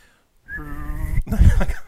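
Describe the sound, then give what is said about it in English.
A voice imitates a jumbo jet taking off: a sustained whistling tone that gives way to a rough, breathy rushing roar, brief. “Let's see, like jumbo jet taking off.”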